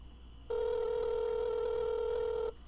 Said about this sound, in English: you better answer your fucking phone. Hold it up close. Yeah, close.